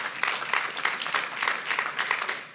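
A single person in a church audience clapping during a sermon, about speaking the word of God with boldness, in a quick, fairly steady rhythm for a few seconds, the sharp claps crisp and moderately loud with no talking over them.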